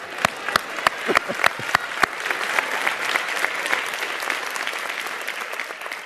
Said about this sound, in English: Because you serve a good God. Better than we deserve. That's worthy of a clap.